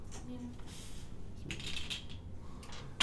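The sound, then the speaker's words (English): Percentile dice (a D100) clatter and rattle across a hard surface in a few short bursts, fairly quiet, ending with a sharper click as they settle. “As I consult my bookkeeping tab, can I get you to roll me a D100, please?”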